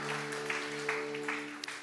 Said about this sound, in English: In Jesus' name, somebody said amen. Hallelujah. Give Jesus a better hand clap. And you may please be seated.